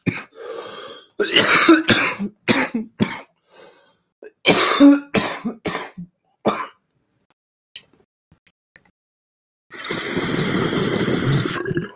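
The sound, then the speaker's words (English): A harsh fit of coughing after eating something: several rapid bursts in two clusters, a few seconds of near silence, then a long rough, breathy rasp at the end. “I'm not a dick though, so I'm not gonna do ASMR of the me coughing and dying.”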